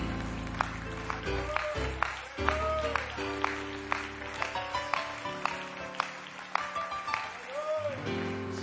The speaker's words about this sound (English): Hallelujah. Let's give the Lord a great big hand clap of praise here tonight.